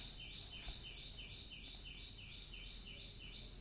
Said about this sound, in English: Dramatic bird chirping thrown in there for good measure.